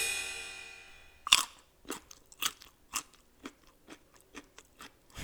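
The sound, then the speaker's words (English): A fading tone gives way to a sharp, crisp bite into a carrot stick, followed by steady crunching chews, about two per second, each a bright crackly burst. No one speaks. “This interruption is brought to you by carrot sticks.”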